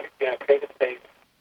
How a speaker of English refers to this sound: Well, we're just hearing an echo,